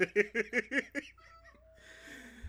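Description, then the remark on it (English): A cat lets out a rapid string of about six short, clipped meows, then falls quiet, leaving faint background noise. “My cat's being a little bupkis.”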